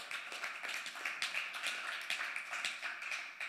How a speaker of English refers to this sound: Come on, yeah, you can clap your hands. Don't be afraid.